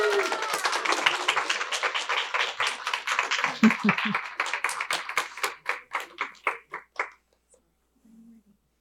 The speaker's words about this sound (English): Give her a little golf clap.